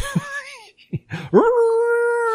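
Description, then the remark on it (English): A voice imitates a krayt dragon call: a wavering, falling wail, a few short throaty bursts, then a loud howl that sweeps upward and holds a steady, piercing pitch until the end. “You can scare off sand people by making that sound.”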